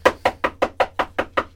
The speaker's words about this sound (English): All right, I am here by Janis's house, and let me knock on his door.